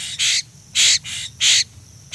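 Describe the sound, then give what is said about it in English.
Harsh, raspy Florida scrub jay calls repeat in a steady rhythm, about four loud rasping bursts evenly spaced, with no voices and a quiet background between them. “Because they depend on acorns during winter, Florida scrub jays can survive only in oak scrub.”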